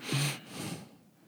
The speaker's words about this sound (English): I said, it's my dad breathing again. You hear it? Yeah.